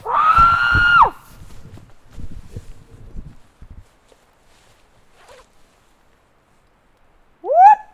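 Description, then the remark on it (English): A man lets out a loud, sustained, high-pitched scream imitating a Bigfoot call, followed by scattered rustling and a quiet pause, then a short rising yelp at the end. “I'm gonna do a scream.”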